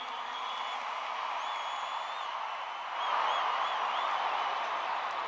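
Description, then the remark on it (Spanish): An audience at a Puerto Rico fundraising event applauds in a steady, dense wash of clapping with high whistles cutting through, the ovation swelling louder about halfway through and holding there to the end. “Fuerte el aplauso para nuestro”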